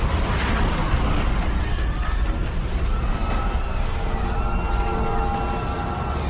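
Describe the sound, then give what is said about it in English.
A habitat bubble cracking open and flooding: a loud, sustained low rumble with strained metallic creaks and whining groans rising over it for several seconds, no voices. “That was the habitat bubble cracking open. It's flooding.”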